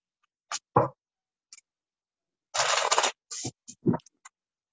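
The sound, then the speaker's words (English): A deck of cards being shuffled for a love advice card reading: a few sharp papery snaps, then a dense half-second riffle burst, followed by quick taps and flicks as the cards are squared up. No one speaks. “Okay, so I'm just going to take that shuffle.”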